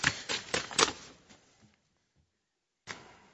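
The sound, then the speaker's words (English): Crisp rustling of three paper sheets being shuffled and flipped in a quick flurry of bursts by a preacher at a pulpit turning them right side up, then a pause and one more brief rustle of pages. “I've got the first paper right side up and the remaining two upside down.”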